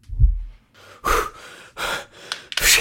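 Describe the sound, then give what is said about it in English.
Ragged, heavy gasps for air from someone suffocating while climbing steps: a sharp low thump at the start, then four strained breathy inhalations in an uneven rhythm, growing louder and harsher. “Guys, I need help. Suffocating up the fucking steps.”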